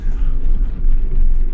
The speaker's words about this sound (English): Explosion.